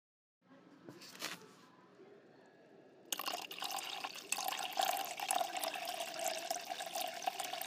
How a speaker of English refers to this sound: I'm measuring some sort of liquid. 512. And I'm being super careful.